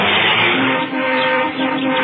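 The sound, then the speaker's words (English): A car's engine roars loudly and steadily as the car drives off, a dense, rushing mechanical noise with no talking over it. “Take your hand off the brake, release, and listen.”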